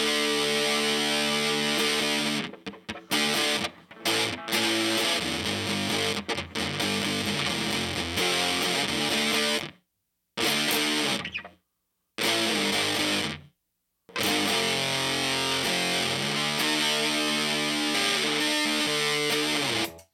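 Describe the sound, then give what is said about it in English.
A Dan Armstrong Ampeg electric guitar played through a Red Witch Fuzz God 2 pedal plays thick, saturated chords and riffs, loud and buzzy, broken by several abrupt stops and short silences before the distorted tone returns. “We've got some dirt here today, Ed. Oh, yeah. This is the Red Witch Fuzz God 2.”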